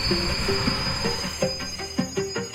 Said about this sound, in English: As the train arrived, the crowd surged forward.